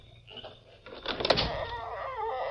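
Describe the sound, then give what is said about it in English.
A door is pulled open: a brief clatter of the latch, then a long, wavering creak of hinges that keeps sounding after the door swings. “And open the door.”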